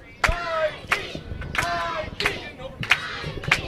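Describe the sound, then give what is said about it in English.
A crowd cheers and yells in a steady roar for the Bitcoin team playing against Capital Vice, with excited voices rising above it and several sharp, loud bangs or claps punctuating the noise at roughly regular intervals. “And it sounds like they've already won over the crowd.”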